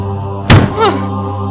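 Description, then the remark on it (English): A heavy stone door behind a smashed mirror thuds shut in one deep, booming impact and cannot be opened again, followed by a short ringing echo that fades over a steady low background hum. “I can't get the door back open!”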